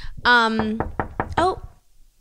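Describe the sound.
A series of four or five sharp knocks on a door in quick, uneven succession, with a voice making drawn-out vocal sounds before and between them.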